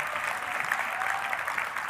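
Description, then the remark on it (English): A crowd applauds steadily, a dense wash of many hands clapping at once, sustained and fairly loud throughout the short stretch with no pauses. “Will you join them in clapping?”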